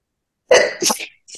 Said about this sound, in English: I'm about to sneeze.